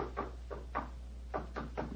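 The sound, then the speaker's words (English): Hollow knocks on a wall to test whether it is solid: a pair of raps, a pause, then three more in quick succession, moderately loud over a steady low hum, with no one speaking. “It sounds solid enough, Holmes.”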